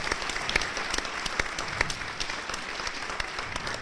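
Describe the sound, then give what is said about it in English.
A crowd applauds steadily for a guest who has just earned his doctorate at Yale, a dense wash of many hands clapping at an even level with a few sharper individual claps standing out, and no voices. “I think that merits some applause, too.”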